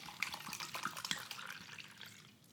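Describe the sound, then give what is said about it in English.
Water splashes and trickles steadily for a couple of seconds during a water break, a bright pouring sound that tapers off at the end, with no one speaking. “That's a water break.”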